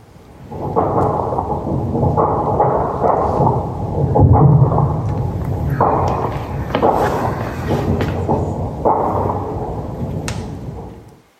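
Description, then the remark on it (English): Heavy bomb explosions boom and rumble almost continuously during a battle in Khartoum, loud and deep, with repeated thudding blasts rolling over one another for about ten seconds before fading out. “The bombs got louder and closer. The building rattled from the concussion of the explosions.”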